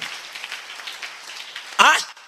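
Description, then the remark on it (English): An audience claps in a steady, busy patter of many hands, moderately loud and diffuse, before a man's voice briefly cuts in near the end. “Clap where?”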